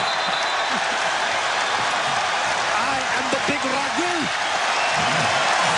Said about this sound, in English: The crowd absolutely loved it. It was hilarious. He got a standing ovation on that play. For a jump ball. People were standing and cheering.